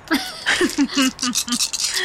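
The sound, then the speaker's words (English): A handful of dice rattle and clatter in a quick run of bright, clicky bursts lasting about two seconds, rolled for a dexterity saving throw, with a voice making short repeated sounds underneath. “Oh, I hate that so sound. So many dice.”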